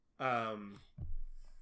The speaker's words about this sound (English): I keep yawning. We are recording this very late at night.